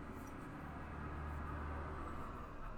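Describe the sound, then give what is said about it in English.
A steady, loud low-frequency rumble of a truck driving by outside, a continuous engine and road drone filling the whole moment with no voices. “Sorry, a truck's driving by.”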